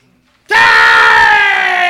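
After a moment of silence, two brothers outside by their cars break into loud, sustained screaming at each other, the raw overlapping voices intense, holding the shout for over a second as the pitch sags slightly.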